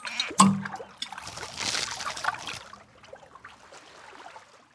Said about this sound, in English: Imagine you wake up in a tropical forest. You can hear the rain dripping off the trees and a waterfall splashing nearby.